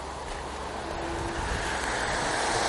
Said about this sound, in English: I know I've hit the road and it's wet, so I'm going to stop talking because you're going to hear a lot of cars going by and there's a lot of background noise.